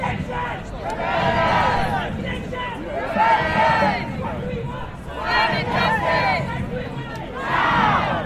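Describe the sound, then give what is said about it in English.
An Extinction Rebellion protest march crowd chanting loudly in unison, the massed voices swelling in repeated bursts every couple of seconds over a steady background murmur of many people. “This is what an Extinction Rebellion march looks like.”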